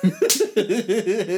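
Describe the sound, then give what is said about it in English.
One sharp, loud open-hand slap cracks out near the start, surrounded by wavering, high-pitched vocal sounds like squealing or laughter that continue after the smack. “That's an open-hand slap, bitch.”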